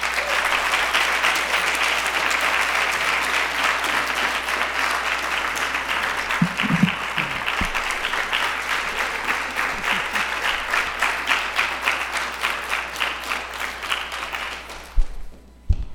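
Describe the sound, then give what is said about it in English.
Sustained audience applause welcoming a speaker before an afternoon lecture, a dense wash of many hands clapping that continues steadily for a long stretch before tapering off near the end. “Well, that was a very long clap, one longer than I've experienced before.”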